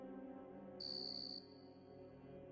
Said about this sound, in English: The thing about a cricket chirping is the sound echoes. It comes from everywhere and nowhere all at once. The sound is its camouflage.